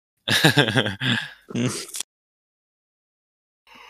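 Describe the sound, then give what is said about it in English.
A loud, drawn-out voiced yawn, its pitch wavering, then a breathy exhale before it falls quiet. “Oh, yawn.”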